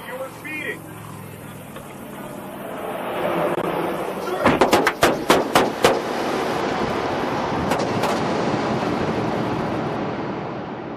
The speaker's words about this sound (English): In one, an officer pulls a man over for speeding. Sir, get back in the car for me now. Sir, the driver jumps out of the car and opens fire on the officer.